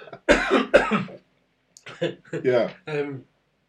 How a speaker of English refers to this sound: So I've eaten a peanut and I'm coughing like crazy.